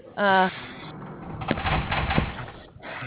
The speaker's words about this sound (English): Well, that was the opening and closing of the door. That sounds like a jail cell,